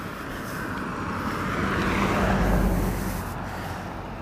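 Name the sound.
truck passing by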